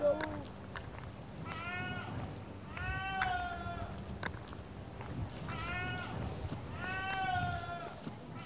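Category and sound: animal, goat bleating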